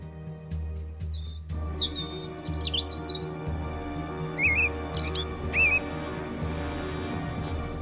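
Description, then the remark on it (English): A robin chirps and sings in short, bright whistled phrases, clear, over a steady low hum in the background. “We love robins at Wake and Bake.”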